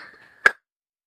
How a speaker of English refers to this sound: I hate the end of summer, but I have to cough right now because I had almonds, okay, just a second.